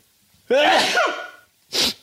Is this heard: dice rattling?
no